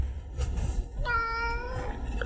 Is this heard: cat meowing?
yes